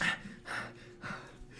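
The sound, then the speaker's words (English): Heavy, breathy panting: three loud, rasping breaths in a steady rhythm, each a harsh burst of air with short pauses between, and no talking. “Heavily panting.”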